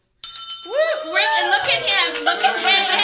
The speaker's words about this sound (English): You get to pick up the bell and ring it once for the founder.